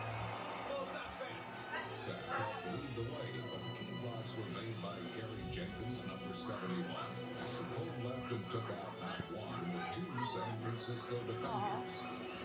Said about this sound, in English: More dogs. There's more dogs? Yeah, more dogs in the Super Bowl party.